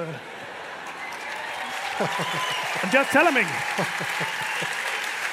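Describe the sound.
A crowd claps in quick, irregular bursts that build partway through, sharp hand claps overlapping while a man keeps talking over them.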